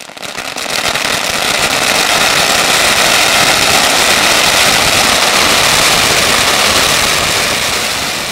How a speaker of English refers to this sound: a sound, a roar, made up of endless firecrackers going off at the same time, and it filled the block like a solid object, a living form.